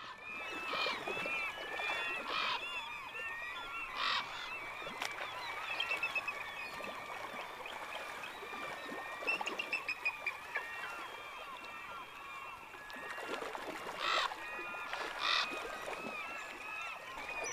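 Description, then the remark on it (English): A busy creek during the salmon run, Salmon Lake Creek near Sitka, with gulls crying, ravens croaking and a bald eagle calling over flowing water, broken by several sharp splashing bursts of salmon thrashing. “There's a bald eagle, there's ravens, there's gulls, and the thrashing of the fish.”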